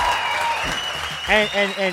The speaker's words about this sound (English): Round of applause.